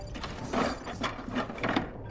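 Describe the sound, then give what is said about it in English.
A man pries his phone apart, with a few sharp mechanical clicks and plastic snaps in an irregular rhythm, moderately loud, with no voices. “This guy just starts diggling his phone apart.”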